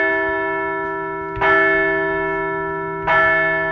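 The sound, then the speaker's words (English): A large bell, rung to celebrate a baseball team's back-to-back wins, tolls twice at an even, unhurried pace, each loud metallic strike blooming into a long, humming resonance that carries over from the previous ring, with no voices present. “Let's ring the bell for back-to-back wins.”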